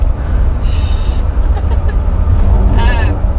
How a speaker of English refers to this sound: Right. And hold for car.